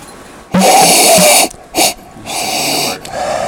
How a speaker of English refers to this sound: sniffing into his glass